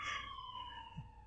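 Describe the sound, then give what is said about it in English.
An emergency vehicle siren wails steadily in one sustained tone, its pitch sliding slightly downward as if moving past, with the vehicle's horn also sounding. “Siren. Ooh, this time we got the horn, too. Get out the way, people. Let this emergency vehicle go through.”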